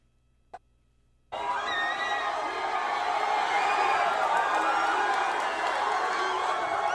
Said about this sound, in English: Hear that? USA. They're cheering. They're chanting.